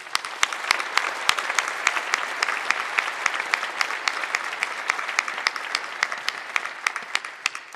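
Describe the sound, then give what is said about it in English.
Sustained applause from an audience at UCD law school for the dean and faculty, a dense patter of many hands clapping with a few sharper individual claps standing out, steady and fairly loud for several seconds with no talking. “this impressive, brilliant faculty that we owe them a round of applause.”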